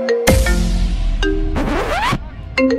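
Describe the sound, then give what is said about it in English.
A loud mobile phone ringtone plays as someone's lost phone is called to find it: bright electronic tones and chimes with a rising sweep and bursts of noise, repeating in short phrases with no talking. “That ringtone fire.”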